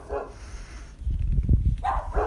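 Several dogs bark in short, overlapping bursts, with a low rumbling commotion in the middle and sharper yaps at the start and end; fairly close and moderately loud.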